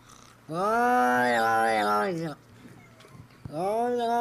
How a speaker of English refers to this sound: Is that a cat saying Kerryon Johnson?